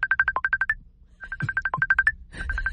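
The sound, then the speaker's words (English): A phone's Facebook Messenger notification tone repeats in three quick bursts of rapid, bright chirping beeps, fairly loud, with faint low thumps and background noise between the bursts. “It's the Facebook Messenger.”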